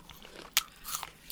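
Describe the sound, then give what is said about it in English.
Crisp, wet crunches of someone biting into and chewing an apple, with a few sharp bursts in quick succession and no talking. “Off the rails with your chewing. Yeah, I'm eating an apple.”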